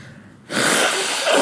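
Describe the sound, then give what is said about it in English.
Someone blows their nose once: a sudden loud, airy honk that holds steady for about a second after a brief quiet moment. “You going to put my blowing my nose on my on the bonus?”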